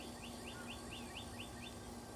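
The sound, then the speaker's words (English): A bird outdoors repeats a quick, high chirp about seven times in a steady rhythm, fairly faint, over a constant low mechanical hum and background noise. “Birds don't seem to mind, but we're going along this path now.”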